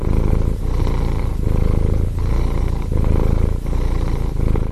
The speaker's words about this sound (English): But we were able to show that in the solicitation purr, there was a high frequency noise about the frequency of both the cat cry and the baby cry.